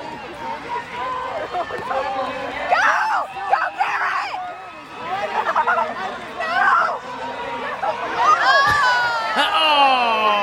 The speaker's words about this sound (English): Hear the whole crowd, too.